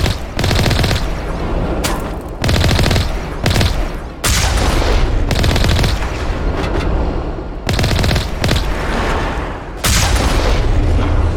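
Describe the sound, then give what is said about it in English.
Loud, dense bursts of video game gunfire and booming tank cannon blasts as the player in a tank fires the cannon back at attacking Geth, relentless, roaring for a few seconds at a time with brief abrupt pauses between volleys. “Something was shooting at us. I couldn't tell what it was, so I just shot the cannon back.”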